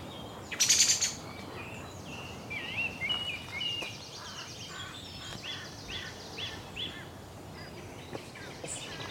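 Song thrushes sing repeated, varied phrases in a quiet oak woodland, opening with a loud, bright burst of song and continuing as softer calls, with noisy ravens also present; no human voices.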